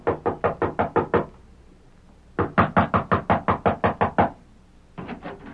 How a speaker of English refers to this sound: A woman in her early 30s mounted the steps of one of the larger houses in Mercer City, crossed the porch, and rapped on the door.